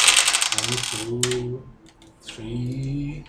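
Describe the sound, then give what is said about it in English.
A fast clatter of dice rattling and tumbling across a surface, rolled for an athletics check in a tabletop game, loudest at the start, while people talk over and after it. “Just roll your dice.”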